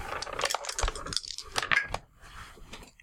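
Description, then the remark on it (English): Dice clatter and tumble across a hard tabletop, a quick burst of sharp clicks and rattles lasting about two seconds before settling into near quiet. “Make me a library use roll.”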